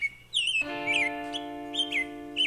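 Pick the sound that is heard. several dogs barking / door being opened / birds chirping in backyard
birds chirping in backyard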